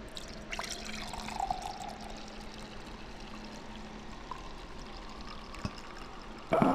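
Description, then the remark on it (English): Mead from a bottle of Chaucer's mead pours steadily into a cup, a continuous splashing stream with a few small drips and clinks, growing slightly louder at the very end. “Hold on, here goes the next cup. Here's the next cup.”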